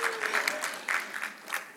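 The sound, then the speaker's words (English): A woman claps her hands about ten times in a quick, slightly uneven rhythm, each clap sharp and bright, with no one speaking over it. “Well, a woman is clapping.”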